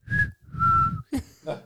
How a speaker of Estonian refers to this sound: Ma mul tuleb põsed lõdvaks lasta. Siis ma suudan ühe haleda viline välja lasta.